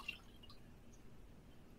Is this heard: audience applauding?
no